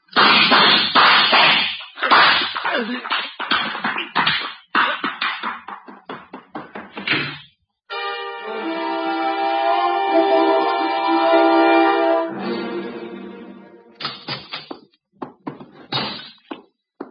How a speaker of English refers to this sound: Archie, you know I dislike the banging of doors. Sign of ill breeding.